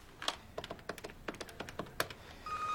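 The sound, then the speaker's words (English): A telephone number being dialed to reach Adam West's agent: a quick, irregular run of button clicks and short beeps, clear, followed by a steady tone starting at the end. No one speaks. “could you get Adam West's agent on the phone, please?”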